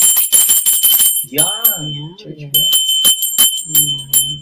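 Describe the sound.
A small souvenir hand bell from Singapore rings in rapid repeated strokes, with bright sustained tones; it pauses while a person speaks, then rings again under more talking.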